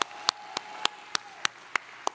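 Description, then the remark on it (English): An audience claps hands in praise of the Lord in steady unison, about eight sharp claps at an even, brisk pace, with a faint sustained tone underneath and no talking. “So let's get excited about what God's going to do, and let's give the Lord a hand clap of praise again.”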